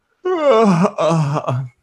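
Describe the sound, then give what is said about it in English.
A person yawns loudly, a drawn-out voiced groan that slides down in pitch, breaks briefly, then trails off in a lower moan, with no other talking. “Yes, that was me yawning.”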